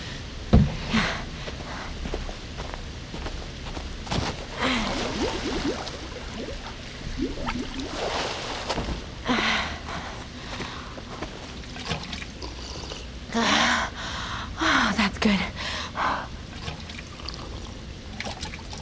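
Someone drinks water as a taste test, with a run of wet slurps, sips and swallows coming in irregular bursts over a steady background hiss, and no talking.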